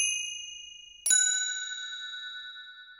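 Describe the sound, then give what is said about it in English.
A bright bell rings with a long shimmering decay, then is struck again about a second in, the fresh chime ringing out clearly and fading slowly. No voices. “did you hear the bell?”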